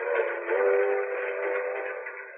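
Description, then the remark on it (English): A train's whistle blares in one long, steady, reedy tone as it pulls in to Chicago, loud with a slightly muffled, narrow sound, and no voices. “waiting for the plane to land, the boat to dock, the train to pull in.”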